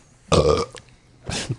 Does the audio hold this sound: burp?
yes